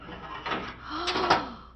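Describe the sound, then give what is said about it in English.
An oven door with a cake baking inside swings open with a brief creaking squeal of the hinge, a couple of soft metallic clunks, and a faint rustling hiss around it. “Just take a look in the oven.”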